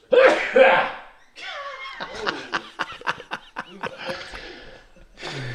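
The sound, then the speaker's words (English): A loud sneeze into a microphone bursts out at the start, followed by people talking and chuckling with a few sharp clicks or taps. “Are you big sneeze.”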